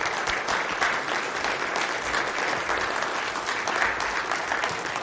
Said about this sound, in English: Let's give him a round of applause, shall we?